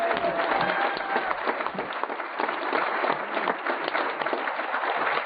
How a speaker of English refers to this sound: I say we give them a big round of applause this morning.